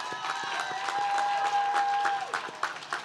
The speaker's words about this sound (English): So before we conclude, I just want to give another round of applause for our faculty and staff who have worked tirelessly to prepare the next generation of leaders. Come on.